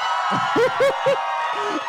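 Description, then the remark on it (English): A live show audience claps to vote for Tonks to move on, a steady, dense wash of applause lasting a couple of seconds, with a few voices whooping and cheering over it in short bursts. “If you want Tonks to move on, clap now.”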